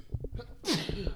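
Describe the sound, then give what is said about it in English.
A single loud sneeze bursts out with a sharp, noisy blast, surrounded by indistinct voices talking just before and after. “Bless you again.”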